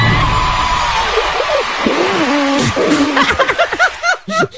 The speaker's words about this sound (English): It doesn't even sound like a real fart, though. It doesn't.